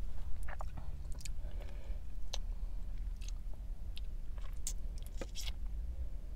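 Crunchy chewing and biting of food with repeated sharp crackles over a steady low rumble, while eating inside a car; no talking.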